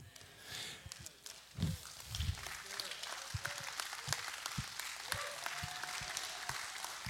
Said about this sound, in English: I love the golf clap. I love golf, so I really do like it.